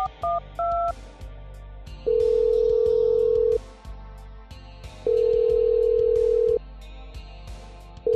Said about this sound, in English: I should get out your phone, dial it in.